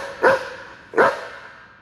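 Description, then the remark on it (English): A one-eyed, broken-legged mutt barks twice, two sharp, loud, mid-pitched barks about three-quarters of a second apart, with a faint background hiss between them and no voices. “Who would have thought that a one-eye, broken-leg mutt can save someone's life?”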